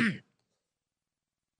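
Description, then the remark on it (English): A single short throat-clearing cough, fairly loud, over in a fraction of a second and followed by silence. “This is so bad. I need a cough button.”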